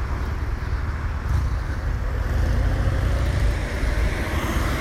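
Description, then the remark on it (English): Steady, dense traffic rumble from cars circling a busy roundabout with four lanes of traffic, a continuous low roar of engines and tyres with some wind buffeting the microphone, no distinct individual vehicles standing out. “So many cars around here, and they're all going around the roundabout, and none of them are using their indicators.”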